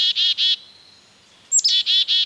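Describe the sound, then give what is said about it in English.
A couple of black-capped chickadees calling as they dart into a yard with a suet feeder hung from a branch in the colder months: a brisk run of three buzzy, harsh "dee" notes, a short pause, then a high chip followed by three more dee notes. No voices. “Now, a couple of energetic black-capped chickadees dart in.”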